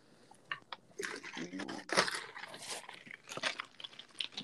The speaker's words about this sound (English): I had to take a water break. I'm sorry.